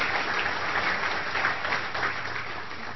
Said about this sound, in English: Yes, please. She deserves all of your applause.